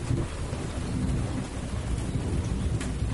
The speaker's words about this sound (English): Where's that thunderclap we were looking for?